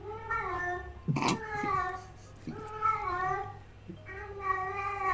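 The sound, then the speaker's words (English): A cat lets out a series of drawn-out, wavering yowls, three long strained cries with short pauses between them, fairly loud, with a brief scuffling burst after the first. “That is a weird cat noise.”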